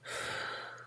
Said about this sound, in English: it's me breathing all the air in from the fucking room, like, gonna say something